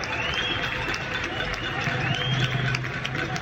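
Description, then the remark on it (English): A steady wash of many people clapping and cheering from their balconies at 9 p.m. to applaud essential workers, with indistinct shouts and a few bright ringing tones threaded through, holding an even loudness throughout. “each night at 9 p.m, the whole country goes out on their balconies and applauds essential workers, and she recorded a bit of it for us.”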